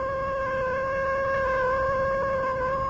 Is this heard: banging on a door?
no